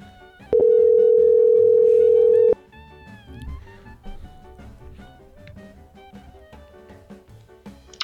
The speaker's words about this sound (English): Call Ray. All right. It's ringing.